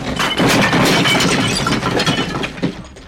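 A loud, sustained crash as a person and a grappling monster crash through several tables and chairs, with splintering and clattering debris tumbling for about three seconds before a final thud as one is slammed against a wall. No voices.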